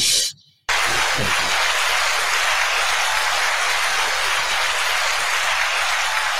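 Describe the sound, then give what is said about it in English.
After a brief silence, a loud applause sound effect bursts in, a dense, steady wash of clapping that hisses almost like heavy rain and holds unchanged to the end, with no voices. “Oh yes, I should have an applause button here somewhere.”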